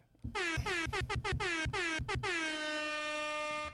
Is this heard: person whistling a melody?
no